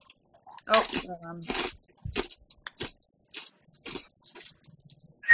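Crunching on a crunchy wrapped snack: a string of sharp, irregular crackling bites and chews, with a brief muffled vocal murmur partway through.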